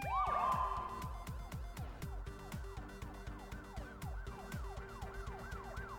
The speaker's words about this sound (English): Cavalry's here. You hear like a couple of police sirens.